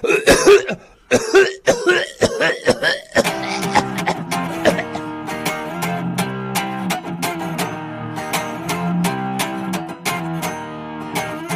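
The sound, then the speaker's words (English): A burst of harsh coughing, several rough hacks in quick succession over about three seconds, followed by music that starts up and carries on steadily. “Hold on a second, I've got a cough.”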